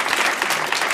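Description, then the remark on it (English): A live audience claps steadily, a dense wash of many hands, sustained and even for the whole moment without any talking. “Just round of applause.”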